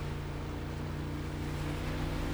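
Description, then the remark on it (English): A steady, low engine drone with a broad wash of water noise from a boat at sea circling the island of Sartine as the weather picks up. The sound is continuous with no voices. “We've circled the island trying to find a place where we can land.”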